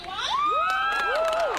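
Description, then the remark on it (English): A protest crowd of thousands of people packed side by side in the streets cheers loudly, with several voices letting out long, rising and falling whoops over a dense background roar, sustained throughout. “We've got thousands of people jammed together side by side in the streets.”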